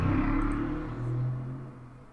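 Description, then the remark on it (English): A large vehicle rumbles past, its deep engine drone loud and steady for about two seconds, swelling briefly again before fading away. No voices are heard. “Sorry, a big car went by.”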